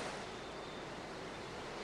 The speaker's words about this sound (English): Nice offshore breeze. Waves should be great.